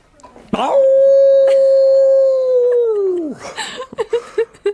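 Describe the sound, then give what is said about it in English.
A person imitates a dog's howl, one long sustained tone held for about three seconds before falling away, followed by a few short yipping or panting sounds, loud. “That was most lifelike. I'm adept at imitating animals.”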